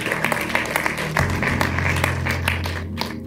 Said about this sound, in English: Clap your hands for God.